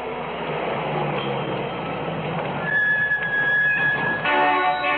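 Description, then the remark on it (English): A heavy truck engine rumbles steadily and low, growing slightly louder as it pulls in at a highway service station in the southwestern Nevada desert, with a thin high whine and squealing tones joining near the end as it settles to idle. “Hey, Walt, the truck's here.”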